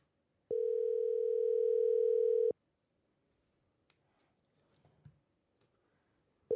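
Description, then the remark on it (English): A phone's outgoing ringback tone on a call to a man, with the phone volume turned up: one steady, fairly loud electronic beep lasting about two seconds, then a long quiet gap before the next ring begins at the very end. “Can you turn up the volume on the phone? I'm calling him. See if he picks up.”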